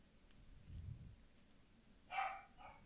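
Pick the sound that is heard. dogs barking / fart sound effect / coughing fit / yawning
dogs barking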